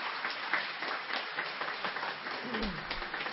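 A crowd applauds steadily for everyone who helped with a Christmas program, as it concludes. The applause is a dense, crackling wash of many hands clapping that holds at an even level throughout, with a brief low rumble near the end.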